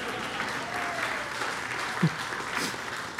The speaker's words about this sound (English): yeah, thank you for the one person that clapped for her.